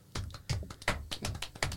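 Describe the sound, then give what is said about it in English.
A bad hand knocks on a hard surface as applause, about seven times in quick, slightly uneven succession, moderately loud, with no voices. “I've got a bad hand and a knock with my bad hand, and then my bad hand hurts.”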